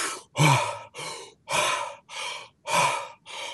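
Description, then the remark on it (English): Rapid, deep breathing done as fast as possible: about seven loud, breathy in-and-out bursts in quick, steady succession, deliberate hyperventilation, with no talking. “And now if you really want to do something rather remarkable, start breathing really deeply as fast as you can, like this.”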